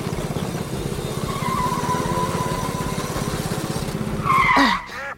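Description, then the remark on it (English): A bathtub car's engine roars steadily during a race with a throbbing, racing drone, then surges louder near the end with a sharp squealing skid before cutting off. “I couldn't hear you over the sound of my engine beating you.”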